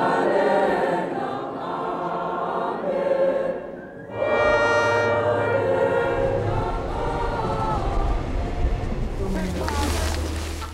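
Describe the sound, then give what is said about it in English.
The Transnet Pelo Pepa health care train rumbles in, arriving at the Banchu, its horn sounding a sustained, loud blast partway through, with steady mechanical noise and faint voices in the background. “News of Pelo Pepa has spread far and wide by the time the train is due at the Banchu.”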